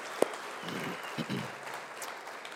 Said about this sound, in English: And so anyway, I just think these people need an applause because they worked hard and gave a lot. And so let's give them our appreciation.